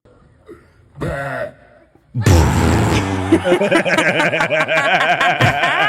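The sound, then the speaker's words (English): A loud, low, croaking burp at a burping festival in Italy in 2023 erupts after a brief voice, quickly followed by a rowdy crowd cheering, whooping and laughing that continues loudly to the end. “So Carmi has found a burping festival in Italy from 2023.”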